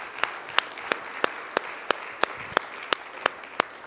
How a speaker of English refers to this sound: Come on, let's give him a hand clap of praise one more time.